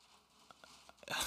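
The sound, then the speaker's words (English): Quiet room tone broken by a few soft ticks, then a sudden rush of hissing, pattering noise like a burst of rain from a storm outside, growing louder at the end. “Sorry, I'm hearing the weather. Mark's enamored by the rain.”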